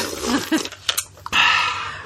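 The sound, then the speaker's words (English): Someone crunching ice: a few crisp, sharp bites and cracks, then a longer stretch of steady, gritty grinding. Moderately loud, with no talking. “And besides that, I have ice. Ice to crunch.”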